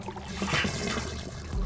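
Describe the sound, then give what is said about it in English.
A short gurgling sputter of water blown out through a snorkel, a wet spray and bubbling lasting under two seconds with no voices. “Blow the water out from your snorkel and then swim across the surface.”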